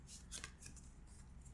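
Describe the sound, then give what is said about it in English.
Cards being shuffled, a few quick papery riffles and flicks over a low background hum, then a softer slide as one card is drawn without looking. Quiet, with no voices. “I've been shuffling. I'm going to choose one of these without looking.”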